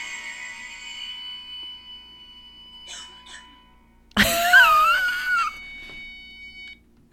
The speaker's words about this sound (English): She went out a little too hard, let out a couple coughs at the end there, and now she's good.